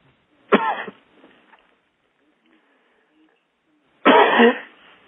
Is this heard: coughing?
yes